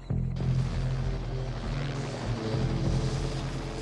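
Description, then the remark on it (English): A helicopter flying over a snowy landscape during a film shoot, with first assistant director Larry Franco aboard, its engine and rotors roaring steadily in a dense, continuous mechanical drone with a low throbbing hum underneath. It kicks in abruptly and no one speaks. “Now, one of the men inside this helicopter was our first assistant director and your brother-in-law at the time, Larry Franco.”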